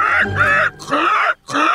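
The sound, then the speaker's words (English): A voice imitates a wounded woman's pained gasping: three strained, groaning bursts with brief breaks between, loud, with no words. “And she's just gasping as blood is falling out of her mouth.”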